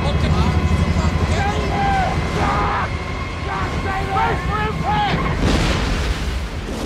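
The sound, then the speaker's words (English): A loud, continuous roar of wind and straining engine noise fills a plane crash scene from the film Cast Away, directed by Robert Zemeckis, with frantic shouting voices rising and falling over the chaotic din throughout. “I think one of the more compelling, like, plane crash scenes I still have ever seen on film.”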